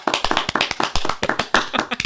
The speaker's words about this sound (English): I'm going to like clap a bunch and you'll be able to tell that on the recording really easily.